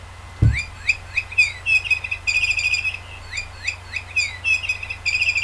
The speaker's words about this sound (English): I got like this other ball thing with feathers on the end, and it makes a noise. So every time you throw it down, it makes this like bird-like noise. You ready for it?